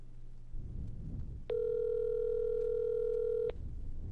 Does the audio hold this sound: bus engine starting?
no